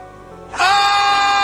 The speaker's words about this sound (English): That is Stephen A. Smith screaming.